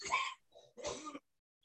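Two harsh, raspy coughs from the speaker's father a moment apart, with a brief throat-clearing rumble between them, fairly quiet, followed by silence.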